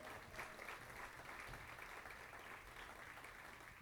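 A crowd applauds the band and the sound crew steadily for a few seconds, a dense, continuous patter of many hands clapping, with faint voices mixed in underneath.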